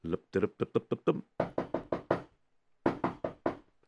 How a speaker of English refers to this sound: Who's there? Who's there? Who's knocking on my door?